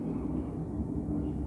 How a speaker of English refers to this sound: Oh, there goes a plane overhead. I don't know if you can hear that.